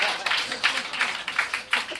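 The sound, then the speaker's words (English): An audience claps steadily for two seconds as musician guests are introduced, a dense, bright patter of many hands with a few sharper bursts rising out of the steady applause. “Clap, motherfuckers!”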